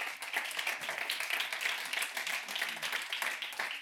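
A church audience applauds God during a service, a dense, continuous patter of many hands clapping at once, bright and crackling, holding an even level for several seconds with no voices rising above it.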